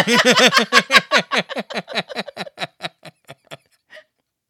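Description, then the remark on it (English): A voice imitates a motorboat with a rapid series of voiced, pitched pulses that start loud and quick, then gradually slow and fade over about four seconds, ending with a faint last burst. “Also, why is it called motorboating? Is it because of the sound you're supposed to make or what?”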